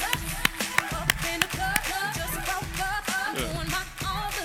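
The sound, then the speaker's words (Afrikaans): A church crowd claps along in a steady rhythm, sharp hand claps landing on the beat over music and a few voices, lively. “Cheer hulle, lekker aan die klap, cheer hulle!”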